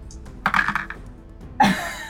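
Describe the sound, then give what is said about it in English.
A quick flurry of light plastic clatter as several dice tumble across a table during a tabletop game's damage roll, followed by a sharper knock as they settle. Fairly clear, with no voices. “I'm glad you said that, because I just rolled 2 1s.”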